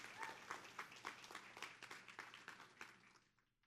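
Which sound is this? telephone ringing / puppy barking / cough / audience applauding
audience applauding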